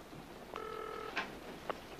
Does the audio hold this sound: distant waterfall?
no